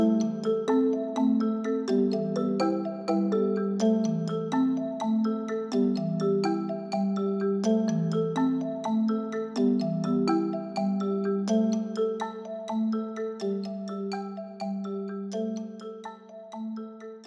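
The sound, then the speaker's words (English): A phone rings with a loud, steady melodic ringtone, a repeating tune of bright electronic notes that plays on without pause and with no talking over it. “Is your phone on silent?”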